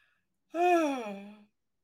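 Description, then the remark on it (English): A single drawn-out yawn, about a second long, voiced and breathy with a pitch that swells and then sinks away. It's fairly loud, alone with no talking over it. “Excuse me for the yawn, people.”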